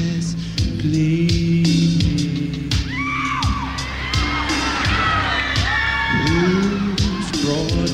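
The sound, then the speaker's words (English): A crowd erupts in loud, overlapping shouts and whoops, voices rising and falling in excited, surprised bursts alongside scattered sharp bangs, sustained throughout with a steady musical hum underneath. “Listen to how the crowd is shocked.”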